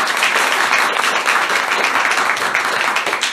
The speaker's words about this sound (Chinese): 那也要谢谢在从小到大给我无数个鼓励跟启发的皇冠大师们，也借你们的手给他们一个很大的掌声。